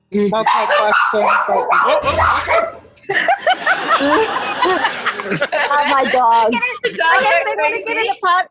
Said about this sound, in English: I guess that's a new podcast interruption. We haven't had dogs barking before. It's reality. This is what happens.